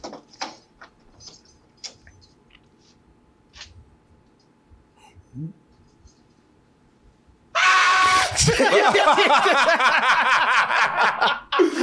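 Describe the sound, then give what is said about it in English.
A man in a movie clip lets out a loud, strained scream that bursts in suddenly after several seconds of near silence and faint clicks, then keeps going, intense, until the end. “You had to work that scream up.”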